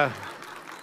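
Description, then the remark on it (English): An audience in a church claps together in a steady, diffuse patter that rises as the tail of a spoken word fades at the start and carries on evenly to the end. “I didn't say that so you guys would clap.”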